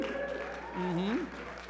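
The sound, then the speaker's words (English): An audience applauds with a steady, dense patter of clapping, while a few voices whoop and cheer over it, their calls rising and falling in pitch, cheering the announcement that the South Bay Singles are hosting their regional Elevate event. “So we can get some cheering for that.”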